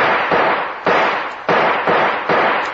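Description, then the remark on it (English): Five loud gunshots fired in quick succession at a door lock to shoot it off, each a sharp crack with a brief ringing decay, with no voices in between. “The only chance is to shoot the lock off that door.”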